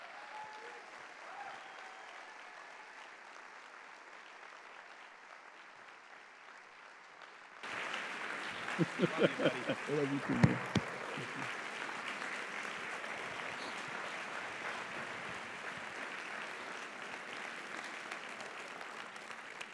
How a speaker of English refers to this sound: they were warm and kind and gave me a rhapsodic applause. So let's do the same for Doc Edwards as he comes up to preach.